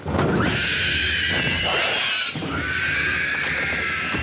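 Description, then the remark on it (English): A screeching ringwraith creature sound effect from the film The Lord of the Rings: two long, loud, harsh shrieks with a high, wavering, raspy pitch, heard alone without any talking. “Here's a screeching ringwraith in The Lord of the Rings.”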